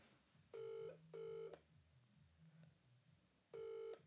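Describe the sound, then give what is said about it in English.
A phone call to Zubi rings unanswered: loud, bright electronic ring tones in short bursts, two in quick succession, a pause, then another, over a faint low background murmur. “Zubi didn't answer your phone call.”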